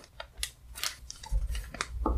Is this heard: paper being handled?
yes